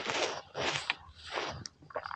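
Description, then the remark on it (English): Someone slurps hot coffee in three noisy, airy sips, each about half a second long with short pauses between, followed by a few faint clicks and swallowing sounds. No one speaks. “I need a sip of coffee.”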